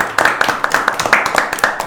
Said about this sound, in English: Not sure how well clapping will go down on the record.